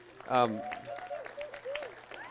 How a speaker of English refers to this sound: So if we could just give a big round of applause for our pastors who...